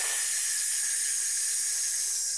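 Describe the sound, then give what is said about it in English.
A long, steady hissing exhale in an abdominal breathing exercise, a person pulling the abdominal muscles in and pushing breath out through the teeth. The bright, airy hiss holds at an even level for about two and a half seconds with no talking. “And as you're pushing the air out, you're going to make a hissing sound.”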